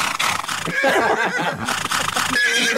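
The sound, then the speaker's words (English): A horse neighs loudly, a long shaky whinny with a wavering, quavering pitch that fills nearly three seconds, with no talking over it. “before the race itself, I think it was Jason Richardson actually interviewed the horse”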